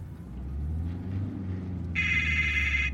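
A cell phone starts ringing partway through, a bright, steady electronic ring tone cutting in loudly over a constant low engine rumble, as if inside a moving car.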